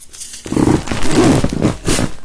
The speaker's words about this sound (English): I'm ripping up a bunch of paper.